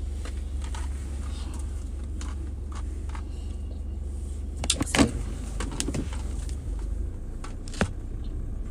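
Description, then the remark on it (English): A car sunroof motor whirs over a steady low interior rumble, with a couple of sharp clicks and thumps partway through as the panel moves. “So y'all, why is this thing coming with the sunroof thing?”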